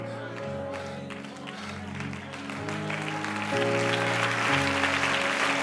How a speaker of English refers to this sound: I wish somebody let whoever's watching hear these applause. We want you back.